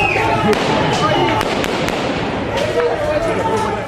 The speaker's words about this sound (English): When the crowd began to get too close, the soldiers opened fire above their heads.